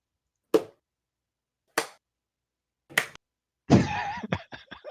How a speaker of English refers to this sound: The slow clap.